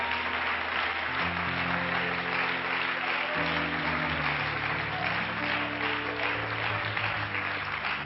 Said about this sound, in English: Praise the Lord, everybody. Why don't we give the Lord a hand clap of praise today?